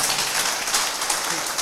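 A church crowd claps together for the Lord in a steady, dense burst of applause, a bright crackling wash of many hands that stays loud and even throughout.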